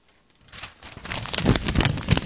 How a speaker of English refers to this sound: Let's switch to something else. Like some paper rustling.